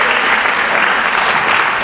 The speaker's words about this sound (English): Now, I'm going to be honest and say, we're not. Because there's about 15 people clap their hands. If you can't even clap, you ain't ready for a miracle.